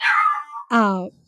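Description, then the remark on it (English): The speaker's dog Fiona gives a high, falling whine, then lets out a single loud, drawn-out bark that drops in pitch, with no one talking. “My dog does not like Stephen.”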